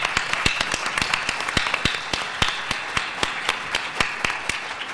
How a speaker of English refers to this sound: I think that we should all applaud them right now.